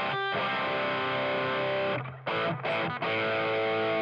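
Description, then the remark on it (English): A heavily distorted electric guitar, played through a modded Marshall with a high-gain humbucker pickup, Echoplex and plate reverb but without the phaser, plays sustained, saturated chords with a rich, buzzing harmonic tone, briefly cutting out and restarting near the end, loud and alone with no voices. “certainly in those first few albums, that was the modded Marshall, high gain humbucker pickup, and then the Echoplex, plate reverb, and the phase, which Chris can hopefully show us.”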